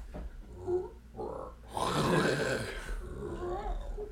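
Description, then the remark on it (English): A man's voice imitates a jaguar roar, building from short throaty grunts into one loud, raspy growling roar that trails off, with no other talk. “I need a roar, bro. Give me your best Jaguar roar.”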